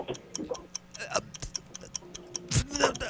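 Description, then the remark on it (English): A 60-second game timer clock ticks in a steady, rapid rhythm, each tick a sharp click, with a louder burst near the end and faint background voices mixed underneath. “60 seconds on the clock, and the No Name movie game begins now”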